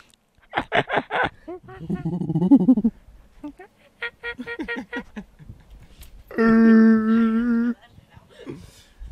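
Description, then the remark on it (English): A person makes a string of monkey-like vocal imitations: quick staccato hoots, a low throaty grunting stretch, more chattering bursts, then a loud sustained wavering call. “It's monkey noises. Nothing wrong about monkey noises.”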